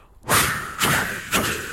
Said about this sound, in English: And then you can choose between four different white noises. We go with this whooshing sound, which is kind of like a...